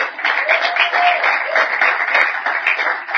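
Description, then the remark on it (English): A crowd applauds steadily for about three seconds, a dense, even wash of many hands clapping at once, with a faint murmur of voices mixed underneath. “I think you should clap.”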